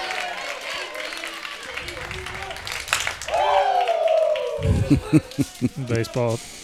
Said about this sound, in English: Basketball team gets two claps and a Ric Flair.